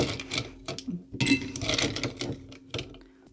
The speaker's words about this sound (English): Okay, so what I want to do first is take some of the ice out of the shaker and plop them in here. We're going to get the ice in the glass. Look how lit the ice is.